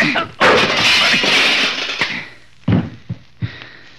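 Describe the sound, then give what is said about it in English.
A punch lands as a sudden hard blow and knocks a man down, followed by a long crashing clatter as he falls, then three short, sharp thuds settle in the quiet afterward. “knocking you down doesn't give me any satisfaction at all.”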